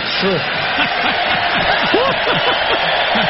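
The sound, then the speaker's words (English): A large crowd roars steadily, many voices overlapping into a loud, dense wall of sound with scattered rising shouts and whoops throughout. “Listen to that crowd.”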